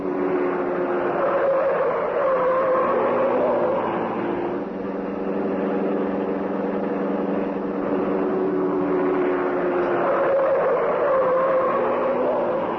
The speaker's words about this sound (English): the car of the Green Hornet whipped through the city streets. So fast was it, and yet so easily did it handle that the Black Beauty could make twice the speed of ordinary cars with more safety.